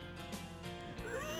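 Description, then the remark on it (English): A horse whinnies loudly, a quavering, pitch-sliding neigh lasting about a second and a half, with no talking over it. “He was on his lucky horse rolling upon the hills.”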